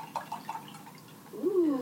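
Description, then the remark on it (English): Rosé wine being poured from a bottle into a glass: a few soft glugging splashes, then a steady stream whose pitch rises as the glass fills, fairly quiet with no talking. “You know my favorite sound. Pour it up.”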